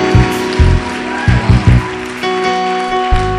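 A crowd claps in a dense, steady patter, with a few heavier low thumps and sustained keyboard or organ tones ringing underneath the clapping. The crowd is clapping for a group of people as the speaker urges them to.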